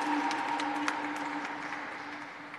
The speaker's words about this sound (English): So one more round of applause for our distinguished individuals and their accomplishments and impact here in the beautiful city of San Francisco.